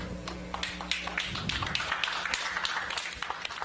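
Polite, scattered applause from a modest crowd celebrating confirmation that the IM team's equipment is on the surface of the moon and transmitting, with a steady patter of individual claps at moderate volume and no cheering or talking.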